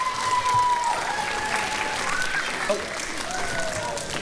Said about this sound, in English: Can you give your parents a round of applause?